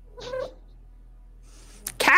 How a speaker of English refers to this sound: Cat!